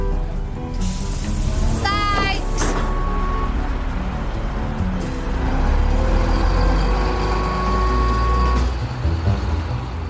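A city bus engine rumbles amid steady street traffic, with a brief rising electronic whine and a few tonal beeps cutting through the continuous low roar.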